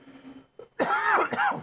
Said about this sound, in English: Sorry, you guys are just going to have to deal with that dumb cough.